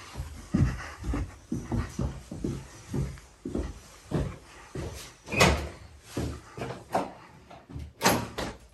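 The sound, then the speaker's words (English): A stubborn upstairs door leading outdoors in a building in Utah being forced open: a steady run of rattling clunks and jiggles, with two sharper, louder bangs toward the end, and no one talking. “Door's always a little tricky.”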